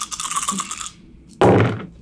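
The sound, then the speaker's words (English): A handful of dice rattles with quick, bright clicks for about a second, then after a short pause they clatter loudly onto a hard surface and tumble briefly before settling. “Got a lot of deces. Oh, so many dice.”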